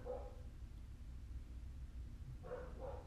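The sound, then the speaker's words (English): A dog barks a few times downstairs, muffled, with short bursts at the start and near the end over a low rumbling background. “Dog barking downstairs and stuff.”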